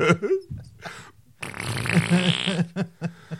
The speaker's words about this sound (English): You should be visited by three ghosts. The first ghost will visit you when the butt farts once.